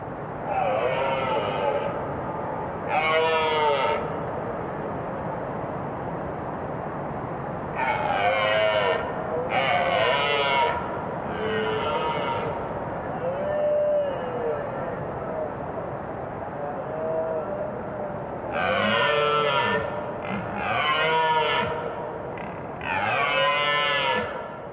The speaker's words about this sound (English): On an October evening near Inverness, Scotland, several rutting deer stags roar against the backdrop of a river.